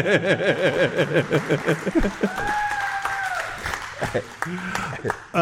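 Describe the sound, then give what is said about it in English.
An audience claps and cheers, a steady wash of crackly applause lasting several seconds, with voices whooping and calling out over it before it tapers off. “Applause for my mom, everybody.”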